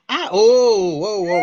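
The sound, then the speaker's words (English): A cat lets out one loud, drawn-out yowl as it turns violent after being petted, its pitch wavering and dipping for over a second, with no one talking over it. “That's the cat. The cat.”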